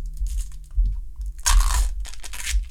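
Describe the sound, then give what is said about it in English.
Crinkling and tearing of a plastic package of Blue Raz pickles being opened, with a loud ripping burst in the middle followed by rustling and a second short tear, no voices. “Let's see if I can get this open.”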